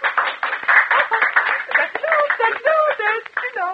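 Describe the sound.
Steady audience applause, a dense patter of many hands clapping at once, with crowd voices and a bit of laughter rising through it as the clapping starts to thin toward the end.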